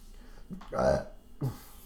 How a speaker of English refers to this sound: I've been eating salads lately, drinking bubbly water, burping so much, trying to hold back the burps. All right, I can't hold it back.